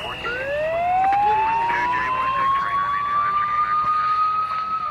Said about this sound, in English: Cue the sirens and police whistles, please.